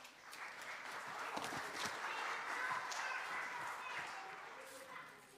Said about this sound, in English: So take it with you. Thank you very much. Give them a clap.